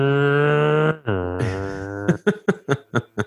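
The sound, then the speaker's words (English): A voice imitates a car zooming past with a Doppler effect, meant as the talking taxi from Who Framed Roger Rabbit: a sustained high hum that abruptly drops in pitch and slides lower, followed by a burst of about six rhythmic laughs. “What car were you imagining when you made that noise?”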